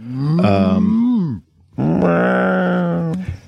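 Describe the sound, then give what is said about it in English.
Two loud, drawn-out mooing calls, a voice imitating alien cows in tall grass, like a cow and a cat mixed, with a yowling edge: the first swells and then bends downward, the second holds a steady, nasal pitch. “it's like a cow and a cat mixed.”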